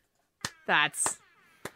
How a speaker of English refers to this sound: I mean, slow claps for Jenny.